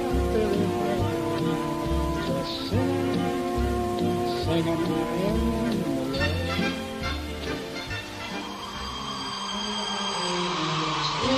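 Steady rain patters and hisses beneath lush orchestral music while a man sings in a famous dance sequence from a 1952 musical film; the downpour grows more prominent near the end as the music thins out.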